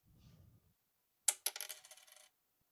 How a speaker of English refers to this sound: Oh, but I was right. I was dropping the same pick over and over.